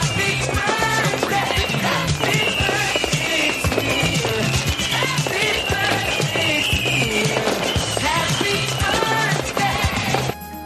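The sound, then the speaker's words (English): A loud, dense barrage of fireworks crackles and pops rapidly for about ten seconds, with whistling streaks woven through, then cuts off abruptly near the end. “And we got some fireworks going.”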